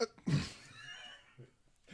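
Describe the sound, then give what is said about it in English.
A single sharp sneeze bursts out, followed by a fading breathy tail and quiet murmurs of voices; it sounds like a person imitating a sneeze. “Kraval sneezes.”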